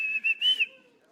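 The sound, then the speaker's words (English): A shepherd's whistle, given as he leaves to call his flock of sheep, rings out as a high, steady tone in three quick connected bursts, the last one longest and loudest, then fades away; no one speaks. “See, when the first shepherd leaves, he may whistle.”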